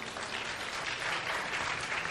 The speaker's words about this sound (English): First time I've ever gotten applause for sitting. Thank you.